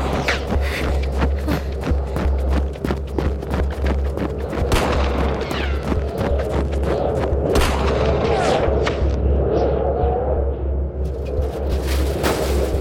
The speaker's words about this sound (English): I hide from the gunfire. Someone outside is trying to kill me.